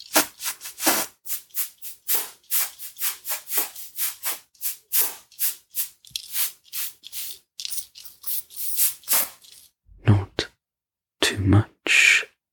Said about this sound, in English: So I give it a quick shake. And then just spray a little bit in each of the shoes, like so.